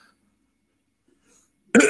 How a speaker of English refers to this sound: Excuse me. I almost sneezed. Too much gun oil in here. Sorry.